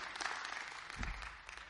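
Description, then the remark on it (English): An audience gives the Lord a hand clap of praise during a morning service, a dense wash of many hands clapping at once, steady and fairly loud throughout, with a brief low rumble partway through and no voices. “Give the Lord a hand clap of praise for what He's doing.”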